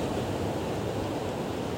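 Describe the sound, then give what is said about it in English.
A steady, rushing wash of ocean surf, continuous, with no distinct breaks or crashes and no voices, just the broad hiss of water rolling onto shore. “And allow yourself to get lost in the beautiful sound of the ocean.”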